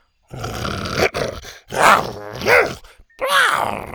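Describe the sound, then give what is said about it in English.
A voice imitates a dinosaur, Buck, growling irritably: a series of loud, guttural growls and groans that rise and fall, with brief pauses between them. “With an irritated growl, Buck glanced between Scoot and the next obstacle, then bit onto her horn and pulled her to her feet.”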